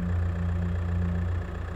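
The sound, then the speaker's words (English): An SUV engine idles steadily with the keys in the ignition, for under two seconds. It is a low, constant rumbling hum with no revving and no voices, at a moderate level. “The keys were still in the ignition, and the car was running.”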